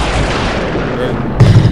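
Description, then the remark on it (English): Heavy, rapid banging on a children's table, a dense run of booming thuds that swells louder near the end, with voices mixed in under the pounding. “You're gonna break the fucking children's table.”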